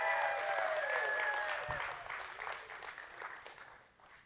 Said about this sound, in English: So give them a big hand clap.